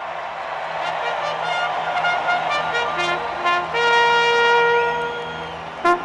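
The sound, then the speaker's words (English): A loud, brassy horn plays a run of held notes at a racetrack starting gate as the horses load before the gates open, the final tone sustained longest, with a low crowd murmur underneath and no speech. “Well, as they begin to load, of course, we hear that famous horn sound as they load, getting everybody ready before the gates open.”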